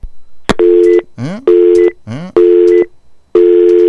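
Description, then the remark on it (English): A loud telephone line tone pulses on and off four times in a steady rhythm, with brief warbling, sweeping chirps filling the gaps between beeps, on an open phone line with no callers. No one speaks. “Yes, phone line's wide open. There's nobody on them.”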